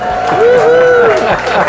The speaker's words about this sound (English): And the crowd goes wild. Yeah, the crowd goes wild.